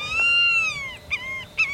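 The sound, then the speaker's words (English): A white-tailed hawk, a large bird of prey, calls with a long, high, slightly falling whining cry, then two short, sharper notes in quick succession, heard alone without any talking. “including this large bird of prey, the white-tailed hawk.”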